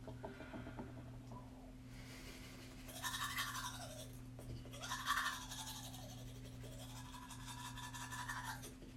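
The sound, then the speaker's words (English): Toothbrush scrubbing, a steady motor-like hum underneath and bursts of bristly, wet brushing strokes that swell and fade several times, with no talking. “I'm going to get my toothbrush. Put a little bit of on my tongue.”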